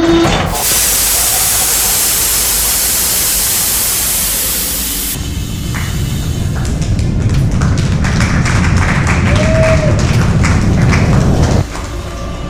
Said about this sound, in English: Airlock opening.